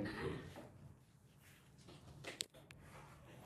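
A pencil taps against a microphone a couple of times, two sharp knocks about a quarter second apart, standing out from a quiet, low rumbling background with no talking.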